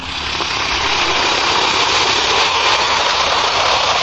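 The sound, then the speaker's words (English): Alka-Seltzer tablets fizz in water in a CBS radio commercial, a steady, dense hiss of tiny crackling bubbles that holds at an even, fairly loud level for about four seconds with no voices. “Now, listen to it fizz.”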